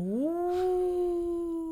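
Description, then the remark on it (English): A person imitates a wolf howl with a single steady vocal tone that glides upward in pitch and then holds level, sounding somewhat ghostly, with no other talking. “I meant that to be like a wolf howl.”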